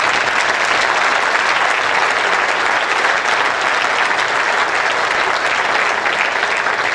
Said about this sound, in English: Just before I forget anything, can I just have a huge round of applause for Players Inc. for pulling this off? It's absolutely superb.